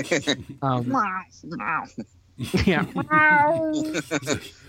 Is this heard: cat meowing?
yes